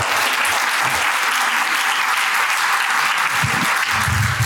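A crowd applauds steadily, a dense wash of clapping at even loudness for several seconds, sounding close and full, with no talking over it.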